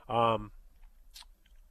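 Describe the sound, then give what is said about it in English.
A brief voiced sound from a person, then a crisp pen click followed by a fainter second click, fairly quiet. “What are you clicking? It's my pen.”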